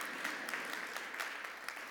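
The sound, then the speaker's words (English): A church audience claps together as the church enters 21 days of prayer and fasting, many hands making a dense, steady patter with scattered sharper claps, continuing evenly for the whole two seconds at a fairly soft level with no voices. “Yes, we should clap.”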